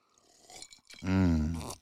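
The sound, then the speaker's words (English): A quiet slurping sip of Rye the Lightning rye whiskey over ice, followed by a loud, drawn-out satisfied 'ahh' from the drinker lasting most of a second. “So we're sipping on that tonight. Listen, I'll sip it right now.”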